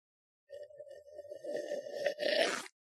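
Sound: slurping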